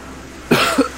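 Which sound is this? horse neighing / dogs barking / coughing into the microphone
coughing into the microphone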